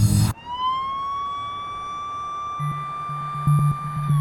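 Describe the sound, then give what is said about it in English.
An ambulance siren wails in a long, steady, slowly rising tone, loud and continuous, over a low engine rumble with a few thumping knocks toward the end. It is a Woodstock Ambulance carrying a person injured in a car accident. “Suddenly, I'm in the back of an ambulance.”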